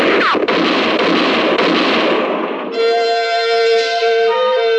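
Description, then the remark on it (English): Loud, dense gunfire roars for about five seconds in a rapid, overlapping barrage during a shootout with hold-up men in a moonlit clearing, then cuts off and gives way to a sustained, ringing tone. No one speaks. “For about 5 seconds, the moonlit clearing thundered to the sound of gunfire.”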